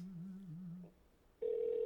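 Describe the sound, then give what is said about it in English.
A call connecting over a phone line: a low, wavering hum fades, then a steady, fairly loud ringback tone starts and holds to the end. No one speaks. “Let's call him. All right, here we go. Let's see if we can get a hold of Chris.”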